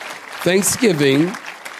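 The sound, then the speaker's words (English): An audience claps in a steady, dense patter of many hands, with a brief voiced call rising over the applause partway through before the clapping continues and tapers off. “I'm waiting for you to clap your hands.”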